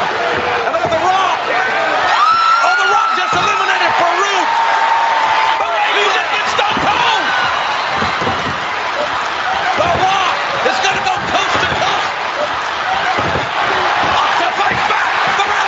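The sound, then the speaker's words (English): A large wrestling arena crowd roars steadily at full volume for the whole stretch as Austin, The Root and The Rock are the last three men left in the match, a dense wall of cheering and yelling punctuated by sharp thuds and slams, with no break in the noise. “Listen to that crowd.”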